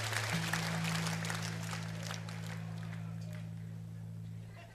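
A large crowd claps and cheers at a 2002 Rockpalast concert in Germany, a dense wash of applause and shouts over a low sustained hum, gradually thinning out toward the end.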